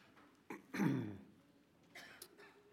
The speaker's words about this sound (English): You may hear me clear my throat several times this morning, and for that I apologize, but it is that time of year for me where drainage starts, and I'm taking antihistamines, and I'll probably do it for the next couple of months.